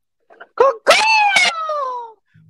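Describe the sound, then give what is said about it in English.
A person imitates a bird call with their voice: a few short yelps, then a loud, long wavering cry that slowly slides down in pitch before cutting off. “Can you give me a bird call? Can you do a bird call?”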